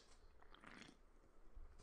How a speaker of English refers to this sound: I did not like that slurp. The really slurp gives it like a feel. It gives the listener a feel like they're here with us.